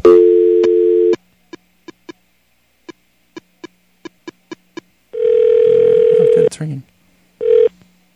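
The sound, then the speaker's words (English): A steady dial tone hums for about a second on an old phone, then a run of short keypad beeps punches in a number, followed by a ringback tone and brief clicks as the line connects. “Let me get the dust off the old phone here, and let's do it.”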